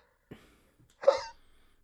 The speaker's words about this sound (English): I have the hiccups.